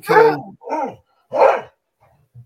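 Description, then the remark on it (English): A dog barks three times in quick succession, loud, with short gaps between the barks, followed by a couple of faint, brief noises. “Because, all right, who has a dog? Your opinion is valid, puppy.”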